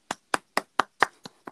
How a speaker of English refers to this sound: Am I clapping by myself?